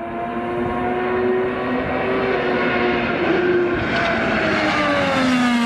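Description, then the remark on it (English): An Arrow McLaren IndyCar engine roars steadily as it laps Phoenix International Raceway, a loud, high-pitched whine whose pitch rises and dips slightly as it runs at speed, with no voices. “highlighting Kyle Larson's run at Phoenix International Raceway and comments after he got out of the car”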